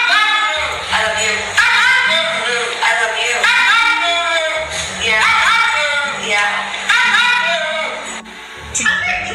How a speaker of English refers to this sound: Have a listen to some of these. Look, this is one. This is a good one. This, look. It's a bulldog.